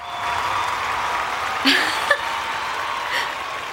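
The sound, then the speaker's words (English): Thunderous applause from a crowd welcoming an artist, a dense, steady wash of clapping that fills the whole stretch, with a couple of brief shouts or whistles rising out of it midway. “Thunderous applause.”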